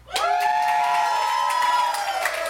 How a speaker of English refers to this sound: Ladies and gentlemen, I have a dear friend, and I found out tonight that she's in the hospital. I'm recording this for Facebook. Can y'all give her a get well scream?